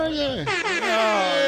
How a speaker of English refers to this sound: You should gave us the air horn or something.